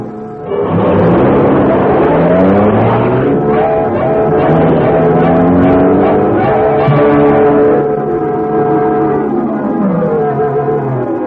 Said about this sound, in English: this building was in reality the hiding place for the super streamlined, high-powered Black Beauty, car of the Green Hornet. Car's all set, gas, oil.